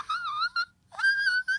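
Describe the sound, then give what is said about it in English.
A voice sings piercing whistle-register notes, a wavering high tone that breaks off, then after a short pause a second, steadier squeal that climbs slightly, fairly loud with no talking. “I want to hear the whistle notes.”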